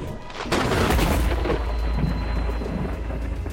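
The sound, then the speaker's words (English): A sudden, loud crack of thunder bursts in and then rolls on as a deep, sustained rumble, heard alone with no voices; a sound effect for the Thunder Wave spell in a game, a clap followed by a thrown dagger that rides the lightning. “All right, so you do this clap and then throw this dagger. It rides the lightning.”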